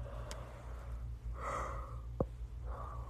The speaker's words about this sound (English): I can't stop yawning.